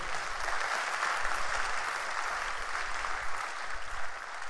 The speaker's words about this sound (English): Why don't you clap your hands for Jesus?